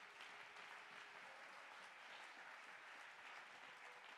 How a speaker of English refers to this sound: Let's clap our hands and give God praise.